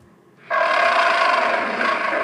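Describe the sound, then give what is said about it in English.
A roar of a monster from the Ultraman series erupts suddenly after a brief faint lull, a loud, harsh, grating bellow with a raspy, mechanical edge that holds steadily until the end. “Here's the roar.”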